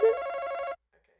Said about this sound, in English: You have the Family Feud buzzer.